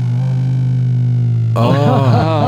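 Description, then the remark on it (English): A stretchy vibrating cock ring for men buzzes with a steady, low electric drone, then abruptly switches to a louder, brighter buzz that warbles up and down in pitch. No one speaks over it. “So it's a cock ring with vibration.”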